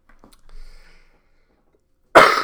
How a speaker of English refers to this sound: Pardon me. Big cough. Wish I could edit that out.